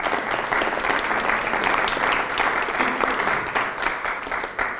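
A crowd claps steadily for a participant coming onto the hot seat, a dense, even wash of many hands slapping at once, sustained at a fairly loud level for several seconds with no voices standing out.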